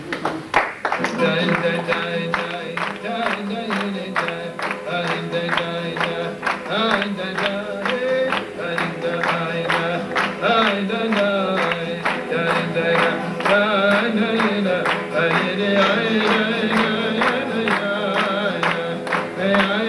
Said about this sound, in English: And maybe we have 2 seconds. How about clapping one time, like mentioned, you know?